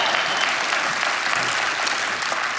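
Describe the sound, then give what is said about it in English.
A church audience claps together for its educators and administrators in a steady, dense patter of applause that holds at an even loudness throughout, with no voices standing out above it. “Yeah, that'd be a good place to clap, that's for sure.”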